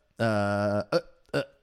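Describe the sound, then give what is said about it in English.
A long, loud, low-pitched burp drones for about half a second, then two short, sharper bursts follow in quick succession. No one speaks over it. “Is that a rich man's burp again?”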